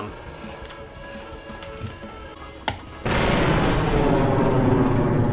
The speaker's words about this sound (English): Grenade. Was a big explosion.